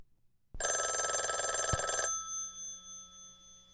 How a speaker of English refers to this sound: A phone? Yes.